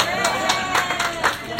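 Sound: audience clapping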